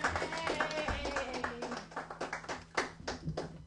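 A round of applause at a show as a performer comes up to the stage: many hands clapping in a dense, steady patter for a few seconds, with faint voices or cheering mixed underneath.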